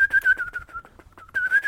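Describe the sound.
Someone whistles an imitation of bird calls: a fluttering, warbling tone in two phrases split by a brief pause, fairly clear, with no talking.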